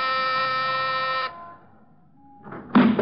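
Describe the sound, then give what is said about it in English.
A doorbell buzzer sounds one loud, steady, rasping tone for just over a second and cuts off. After a short lull, a burst of rough clattering noise follows. “Ring the bell.”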